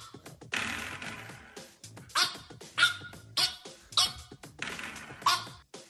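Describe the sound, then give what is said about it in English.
A small French Bulldog lets out a string of high, squeaky barks and yips in quick bursts while hitting a doorstop over and over, with a faint springy rattle between some of them. “There's another French Bulldog video where the guy is in love with the doorstop here.”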